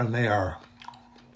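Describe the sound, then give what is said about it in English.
A man speaks briefly, then comes soft, wet chewing of fresh raspberries and blackberries from a farmer's market: a few quiet irregular bites and squishes with a faint hum underneath. “Raspberries and blackberries from the farmer's market.”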